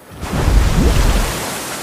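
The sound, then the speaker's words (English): A glowing figure bursts up through a surface of golden water with a sudden, loud splash, followed by a heavy rushing, churning wash of water that lingers for over a second. “The guards shielded their eyes as they heard something burst through the surface of the water.”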